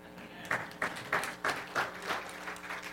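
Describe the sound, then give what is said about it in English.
An audience claps together in a steady rhythm, with sharp, bright beats about three per second standing out above a continuous wash of scattered applause. “And for all of you that didn't clap, you will get converted.”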